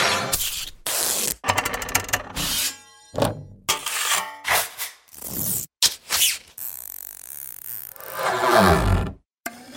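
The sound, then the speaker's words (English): A rapid series of harsh scrapes, scuffs and grinding rasps as objects of many different materials are scraped, cut and scuffed with hammers, knives, scissors and saws, separated by brief silences. Fairly loud, with some gritty, rhythmic passages. No one speaks. “Ex Machina features scraping, cutting, scuffing sounds of tons of different objects, 700 recordings in all.”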